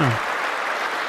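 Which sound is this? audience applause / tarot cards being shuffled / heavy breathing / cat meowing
audience applause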